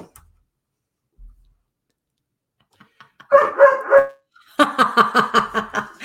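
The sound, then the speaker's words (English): After a quiet start with a few faint clicks, a dog lets out a short run of three sharp barks, then a rapid burst of high-pitched yips and barks, loud, with no talking. “See, it's hysterical because these dogs talk back to him all the time.”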